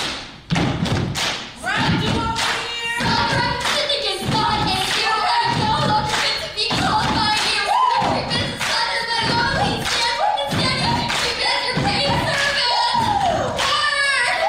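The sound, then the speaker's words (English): People on stage stomp loudly in a steady rhythm of heavy thuds while a crowd of voices cheers and shouts over them, the noise staying dense and forceful throughout. “It's also in that camp of the stomp, like the when they're we're all stomping, that becomes the loudest noise you've ever heard.”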